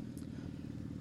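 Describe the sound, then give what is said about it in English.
A motorcycle engine rumbles steadily as it passes by, a low throbbing drone holding a constant level for about a second with no voices; the rider wears leather gear, including leather pants. “Another pet peeve of mine is when people ride motorcycles and don't wear the appropriate clothing.”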